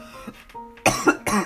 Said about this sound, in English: Oh my goodness. Oh, that one, I coughed at the odd number.